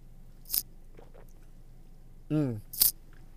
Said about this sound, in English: Let me take a quick sip of coffee. Power up the brain.